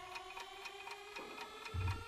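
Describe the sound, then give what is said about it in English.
A quiz countdown timer ticks in a steady, quick rhythm during a timed round of ten questions, about four crisp ticks a second, over a faint sustained electronic hum, with a low thud near the end. “You can stop the countdown.”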